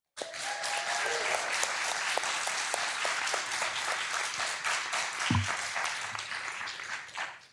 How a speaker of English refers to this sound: Please give a huge, warm round of applause for our guest today,